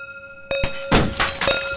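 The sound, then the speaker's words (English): Glass shatters loudly, a sudden crash followed by a burst of tinkling shards and a second smashing impact, with no voices. “Watch as the world is stripped of all glass.”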